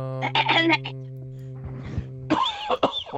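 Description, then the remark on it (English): A man choking on orange soda coughs in two harsh, throaty bursts, a short cluster followed after a pause by another round, with a steady low hum running underneath. “That was a real cough.”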